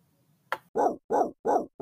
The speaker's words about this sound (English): You heard it here, folks. That's 4 out of 5 barks. Not too bad from the NutriSource line.